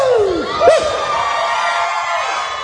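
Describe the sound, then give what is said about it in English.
A crowd hoots and hollers, with rising and falling whoops and shouts over a steady roar of cheering voices, loudest near the start and then holding at a lively, constant din. “That's a lot of hooting and hollering at the end of that one.”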